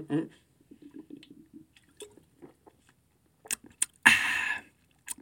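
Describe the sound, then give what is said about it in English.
Someone drinks water: after some quiet low murmuring, a few short wet clicks lead into a loud, brief burst of gulping and slurping near the end. “Oh, gotta wet the whistle real quick.”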